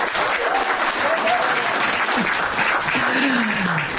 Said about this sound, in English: I hope you enjoyed clapping, because don't do it anymore, okay?